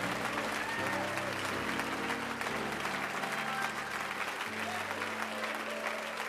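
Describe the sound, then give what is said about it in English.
A church audience claps steadily throughout to welcome guests, a dense, even wash of applause that never lets up, while sustained low keyboard or organ chords shift underneath. “And would you clap really loud and make our guests feel welcome?”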